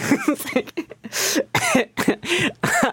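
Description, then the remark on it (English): Strained, gulping throat sounds from someone working through a burp: a choppy run of short voiced bursts, about eight in three seconds, wavering in pitch and fairly loud. “I know it sounds, I think it sounds like I'm about to cry, but I'm, like, working through a burp.”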